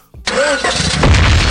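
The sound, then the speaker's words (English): After a brief quiet moment, a car engine suddenly cranks and turns over as a car bomb sound effect, settling into a loud, steady rumble with a deep low hum that continues to the end. “It said car bomb. I thought it was gonna be better.”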